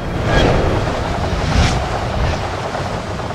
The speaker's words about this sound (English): blasts the side of Steelbeard's sails with a mighty gust of wind, rocking him violently to the side